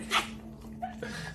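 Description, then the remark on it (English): A dog whimpers briefly in a played video, with a sharp high yelp at the start and a fainter whine after, heard fairly quietly over a steady low background hum. “I was like, man, what if you would have broke that dog's neck?”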